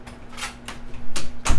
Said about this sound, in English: Sorry, I'm closing my door.